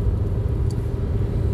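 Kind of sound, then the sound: vehicle, car interior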